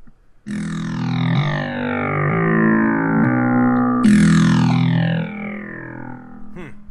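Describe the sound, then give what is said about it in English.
A harsh, buzzing FM-synthesized tone on FM channel one of a Sega Genesis soundtrack, plain sine waves modulated by others, with dense metallic overtones; it sustains for several seconds, shifts pitch in steps, then restarts brightly and decays, ending with a short swooping sweep. “It is nothing but plain sine waves, crisp, you know, kind of nice little woo sound being modified by other ones until you get this kind of jarring abrasiveness.”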